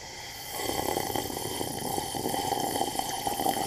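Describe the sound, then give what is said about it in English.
A long, noisy slurp of coffee from a mug, airy and wet with bubbling fluctuations, starting abruptly and continuing steadily for about three seconds with no talking. “Let me take another sip.”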